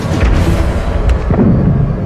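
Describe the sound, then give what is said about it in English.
Heavy, continuous rumble of anti-aircraft gunfire and booming explosions during an air raid, loud and dense, with a couple of sharper blasts standing out partway through. No voices. “I started hearing a lot of loud explosions.”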